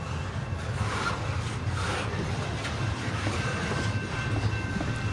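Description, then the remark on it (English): A train rumbles steadily right past Kearns Brothers Studio in Plymouth, a continuous low-frequency roar with faint rhythmic wheel clatter and a thin high metallic whine, holding at constant loudness throughout. “Train going right by Kearns Brothers Studio in Plymouth right now.”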